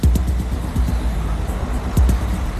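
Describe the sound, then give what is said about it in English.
Heavy trucks rumble past on a road, a steady, loud low engine drone with repeated thumps and rattles from the vehicles as they roll by. “The trucks forge ahead, charging about 33,000 rands per round trip.”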